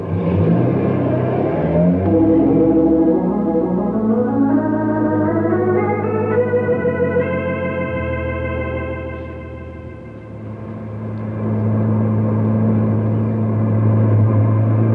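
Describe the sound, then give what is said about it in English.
A car engine revs hard and climbs steadily in pitch as it accelerates, then holds a loud, strained whine as it drives fast, continuous for the whole stretch. “I've got the car under control, haven't I?”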